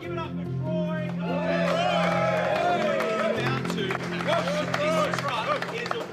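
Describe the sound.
A loud crowd cheers and shouts continuously during a charity record attempt, urging on a man straining to get wheels turning, with voices rising and whooping over scattered clapping and a steady low hum underneath.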